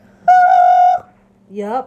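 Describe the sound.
A person imitates a pigeon: a sustained, nasal hooting note, then after a short pause a shorter warbling call that slides upward. Fairly loud, with no other sounds.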